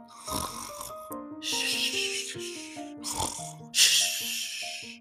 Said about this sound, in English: lay very still for a long time until he heard his mom and dad snoring softly.